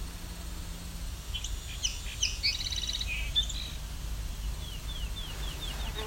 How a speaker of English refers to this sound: There's also field sparrow singing. Song sparrow, too. Yeah, there's two right here.